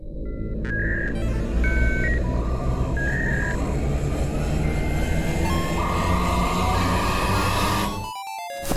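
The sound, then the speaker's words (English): A reactivator device, just sprayed down, revs up with a loud, steady mechanical whir and rumble, dotted with short electronic beeps, then cuts off into a quick run of rising chirping tones. No one speaks. “This is the canonical noise the reactivator makes.”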